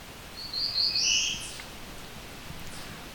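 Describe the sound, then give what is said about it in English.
A sped-up bird song, an accelerated version of the 'Beer Beer Bees' song: a single quick, high, buzzy trill lasting about a second, followed by faint steady background hiss with no voices. “So this is an accelerated version of the Beer Beer Bees song.”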